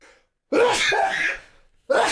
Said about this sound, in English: Oh, boy. COVID all over the place. Bless you. Thanks, but my mustache is out of the way, boys.